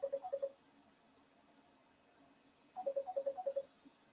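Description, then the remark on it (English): A phone rings in two bursts of rapid warbling electronic trills separated by a pause of a few seconds, moderately loud with nobody talking. “I hear your phone.”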